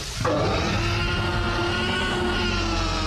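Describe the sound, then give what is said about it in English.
A reconstructed T-Rex roar, a best guess of how a T-Rex sounded, made by combining a baby elephant's squeal, an alligator's gurgling and a tiger's snarl: a loud, sustained bellow that bursts in after a brief moment and holds steady for about three seconds, with a deep rumbling base under rasping, layered tones. “By the way, that roar you just heard is a best guess of what a T-Rex actually sounded like, and that best guess is a combination of a baby elephant's squeal, an alligator's gurgling, and a tiger's snarl.”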